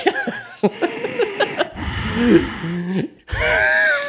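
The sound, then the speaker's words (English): A voice imitates the heavy breathing of the Haddonfield killer: a run of short, breathy gasps, then a longer rasping inhale and exhale, ending in a drawn-out, voiced moan. “That's why it's the heavy breathing.”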